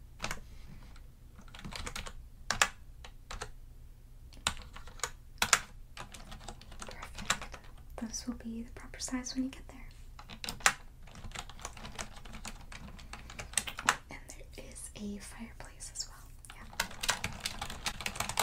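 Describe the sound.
Steady, crisp computer keyboard typing during a hotel check-in roleplay, with irregular clusters of sharp clicks and occasional louder key taps, running throughout while a soft-spoken voice talks quietly over it.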